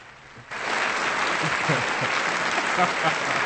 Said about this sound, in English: Where's my applause?